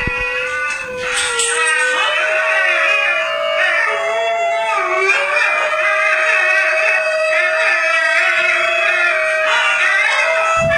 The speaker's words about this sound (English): I think there's a video here, and I'm wondering if it'll... Yeah, I want to hear what the wild singing dog sounds like.